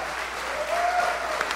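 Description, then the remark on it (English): A crowd applauds Lee Smith steadily, a dense wash of many hands clapping at an even loudness throughout, with a faint whistle rising briefly over the noise. “Again, great round of applause for Lee Smith.”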